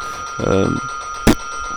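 A bell rings once in a brief, buzzing, tone-rich burst lasting about a third of a second, followed later by a short sharp noisy click over a faint steady hum.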